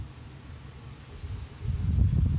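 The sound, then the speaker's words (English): Heavy rain pours in a steady, dense hiss with a low rumbling undertone, swelling noticeably louder over the last second. No voices are heard. “Oh, it's really raining now, huh?”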